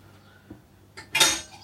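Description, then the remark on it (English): The pieces of a three-piece coffee maker clink and clatter as they are handled in a kitchen in the morning: a soft knock, then a couple of bright metallic clinks, with one louder, ringing clatter near the end. “Right, let me just get the coffee maker.”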